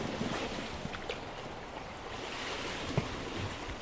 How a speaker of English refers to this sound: Back paddle. I'm on the Arnold River with students from Greymouth's renowned Taipotini Outdoor Recreation School.